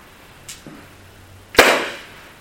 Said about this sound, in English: When you perceive the clap, there was sound. What came after that is thinking. That wasn't much of a clap, or that was a loud clap.